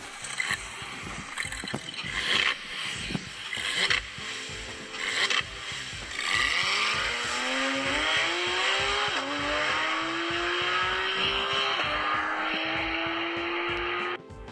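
A car engine cranks and sputters in uneven bursts, then catches and revs, its pitch climbing into a loud, steady roar that holds for several seconds. No one speaks.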